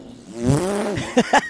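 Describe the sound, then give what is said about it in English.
A car drives by loudly, its engine a steady droning whine that swells and bends in pitch, followed by two short, sharp bursts of noise at the end. “Some car driving by. It's so loud.”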